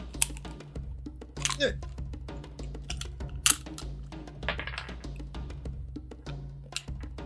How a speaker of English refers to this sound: Give me an arcana check. I'm cracking my dice. I'm gonna roll this dice real fast.